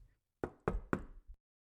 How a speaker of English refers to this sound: Picture yourself outside of your childhood home. Look at the door. Now knock.